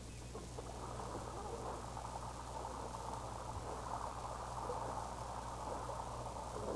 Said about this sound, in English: It sounds like rain.